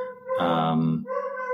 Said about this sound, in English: You have a new puppy. Yeah, that's old dog barking. Old dog barking at new.